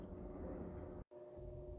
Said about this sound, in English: Oop, there goes a plane.